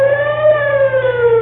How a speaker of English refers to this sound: Eb, how does the siren sound? Great, great, Newt. Sounds just like an opera star. Oh, that's good. It's a brand new one.